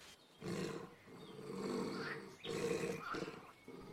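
A low, rumbling animal growl repeats in several drawn-out bursts, steady, with short pauses between each throaty swell and no voices.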